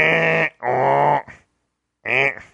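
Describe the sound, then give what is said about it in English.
A person imitates an angry cat with three loud, strained yowls. The first two run almost back to back, then a brief silence before a shorter final cry. “Is that the sound your cat's making? That's the sound my cat makes.”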